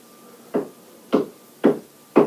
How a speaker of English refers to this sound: I wish this person would stop fucking knocking in the evening when I'm trying to fucking record. For fuck's sake.